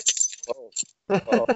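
Keys jangle in quick bright clinks at the start as a person who has just got home gets out of a car, followed by a brief voiced sound and a short burst of muffled talking and shuffling movement.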